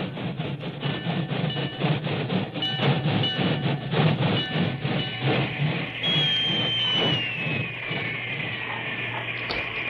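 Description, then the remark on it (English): A work train arrives on the main track beside the Medicine Hat telegraph station in light drizzle, rumbling with steady rhythmic clacking of wheels; partway through, a long, high engine whistle rises over the noise and holds, slowly sliding lower in pitch. “It was only a short time later, and the rain was barely a drizzle, when an engine whistle announced the work train's arrival on the main track beside the Medicine Hat telegraph station.”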